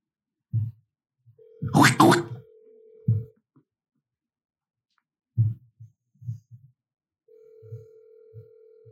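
A phone ringback tone sounds twice while calling a man back who does not pick up, each steady buzzing ring lasting about two seconds, over soft low thumping beats and a brief burst of noise near the start.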